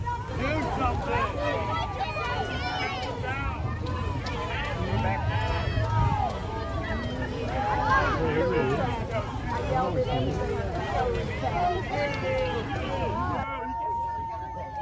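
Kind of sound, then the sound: crowd, crowd booing and chanting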